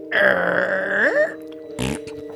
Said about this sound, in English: I wish you wouldn't scrape my furniture across the floor like that and then fart in it.